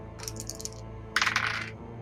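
Six-sided dice (d6s) clatter across a hard table in two bursts, a lighter rattle of small hard clicks followed by a louder, busier tumble that settles after about half a second. No one speaks.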